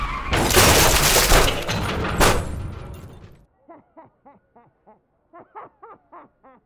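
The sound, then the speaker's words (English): A woman crashes her car through Monrovian's gate in a loud, sustained crunch of metal and shattering for about three seconds, totaling the car, followed by a string of short, rhythmic snickering laughs. “That lunatic just crashed her car through Monrovian's gate.”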